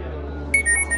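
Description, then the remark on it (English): A Venmo payment app notification alert on a phone: a bright electronic tone followed by a quick run of short, high-pitched beeps, sounding over a low, steady background hum with no talking. “That's when she got a strange Venmo notification.”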